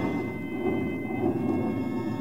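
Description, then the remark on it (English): Low, steady rumbling of thunder rolls on without a break, deep and fairly loud, swelling slightly midway with no voices over it. “Wow, looks like it's fixing to rain.”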